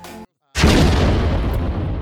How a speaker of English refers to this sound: You hear a loud explosion. It sounds like it's come not from the building you're in, but from a building that couldn't be far off.